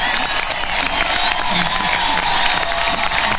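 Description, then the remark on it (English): A loud, steady wash of audience applause with cheering and whoops mixed in, dense clapping filling the whole stretch without a break. “Another 30-second applause break.”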